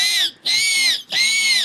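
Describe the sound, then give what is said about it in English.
A person does a loud, shrill imitation of a pig squeal: three piercing, strained shrieks in quick succession, each separated by a brief gasp. “welcome to Pigs. And now you got to squeal for us.”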